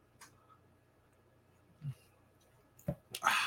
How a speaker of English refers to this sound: I'm going to drink some water. When I drink water, y'all hit the like button.